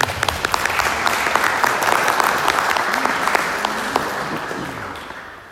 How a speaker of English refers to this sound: may I ask you to give an applause for me.